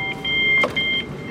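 Inside a packed commuter train: a steady low rumble carries a thin, high electric whine, with a couple of brief hissing swells and no voices.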